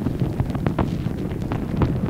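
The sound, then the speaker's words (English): A recording from inside a cow pat with dung beetles at work: a steady, muffled low rumble scattered with soft scratchy crackles and brief clicks, continuous throughout with no voices. “So here you go, the inside of a cow pat.”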